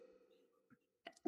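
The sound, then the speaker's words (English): A quick sharp intake and catch of breath, then a loud, explosive sneeze bursting out at the very end, with nobody talking. “Yeah, you perverts can hear me sneeze.”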